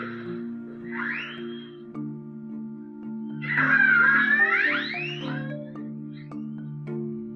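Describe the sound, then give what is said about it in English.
In the ocean, an orca makes a series of sharp clicks to find things it can't see. The clicks tick away irregularly alongside rising, squealing whistles and a steady low harmonic drone, with one louder upswept call in the middle. “When an orca wants to find things in the ocean it can't see, it makes some clicking sounds.”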